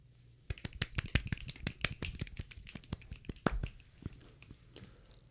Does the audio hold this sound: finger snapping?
yes